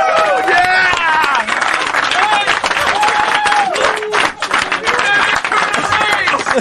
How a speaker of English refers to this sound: Yeah! A thunderous round of applause.